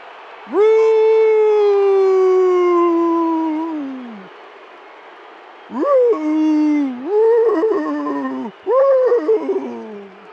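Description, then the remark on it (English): A basketball arena crowd at a Jazz game on St. Patrick's night yodels in unison in the final seconds: one long held, slowly falling note, then a pause and several loud warbling bursts that break up and down in pitch. “Crowd just staying on it. Little yodeling and odeling on this St. Patrick's night.”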